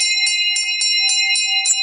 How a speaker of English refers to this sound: ring the bell.